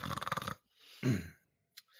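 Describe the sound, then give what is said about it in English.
A woman sleeping in a chair gives a loud, drawn-out yawn with a shaky, groaning voice, a breathy pause, then a second lower groan trailing off into a soft breath, with no talking. “And the woman at the chair just yawned really loud while sleeping.”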